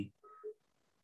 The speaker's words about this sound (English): Hold on, sorry. Mm-hmm. When we got married, I had a phone call come through.